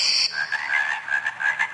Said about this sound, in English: Frogs.